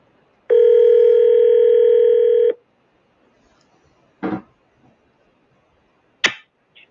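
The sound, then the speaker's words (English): A steady telephone dial tone hums for about two seconds, then cuts off, followed by two short, sharp clicks spaced a couple of seconds apart, like buttons being pressed, as a show host places a call to a caller. No one speaks. “let's get Leslie on the phone”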